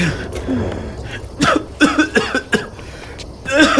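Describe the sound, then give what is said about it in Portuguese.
A series of harsh coughs in uneven bursts, several in a row with short gaps, followed by a raspy throat-clearing cough at the end. “Eu vou pegar um pouco de água pra ti, pra ver se essa tosse passa.”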